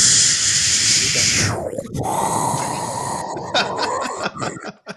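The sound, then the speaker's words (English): A voice imitates a nice warm shower running with a steady, breathy hiss that shifts and drops in pitch partway through, then breaks into uneven, spluttering bursts toward the end. No words are spoken. “Honestly, my favorite noise is a nice warm shower. Just listening to the shower in the background.”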